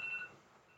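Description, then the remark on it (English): A faint, brief mobile phone tone from a phone not put on silent: a couple of thin, steady high-pitched beeps heard quietly in the background, with no talking. “Oh, that's me. I forgot to put my phone on silent.”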